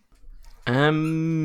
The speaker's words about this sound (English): I have a dog playing with a toy right next to me. But she wants her part of the podcast. She's played with the toy.